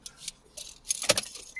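keys jangling

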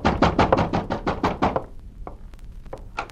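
pounding on a door

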